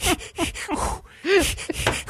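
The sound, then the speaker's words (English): A voice imitates the Lamaze breathing of a Florida woman in labor filling out her ballot in her car: a quick run of short, breathy puffs, a brief pause, then a longer voiced exhale followed by more rapid panting breaths. “She filled out her ballot in her car, all while doing her Lamaze breathing.”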